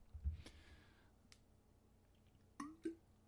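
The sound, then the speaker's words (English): Someone takes a drink of water: a few soft, wet gulps and small mouth clicks with a faint breath, spaced apart in otherwise quiet surroundings, no talking. “Taking a drink of water before we talk about Wave.”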